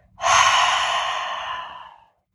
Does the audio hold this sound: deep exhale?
yes